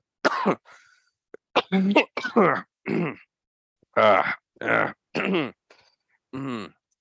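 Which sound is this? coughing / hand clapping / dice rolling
coughing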